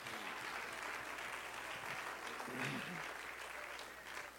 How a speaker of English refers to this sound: Clap your hands all over the building in Jesus' name.